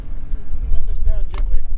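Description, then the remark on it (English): A steady, low engine rumble drones throughout as a small motorboat putters slowly along a river around a small wooded island, out fishing with trot lines of baited hooks, with brief snatches of voice and a short splash-like burst near the end. “We putter around a small wooded island.”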